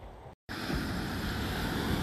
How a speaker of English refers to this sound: So, I hope you can hear this over the roar of the waves.